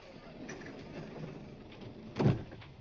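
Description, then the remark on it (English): A sliding door rolls shut with a brief whirring slide that ends in a soft, muffled thud, against a low steady background hum. “Watch the door, please.”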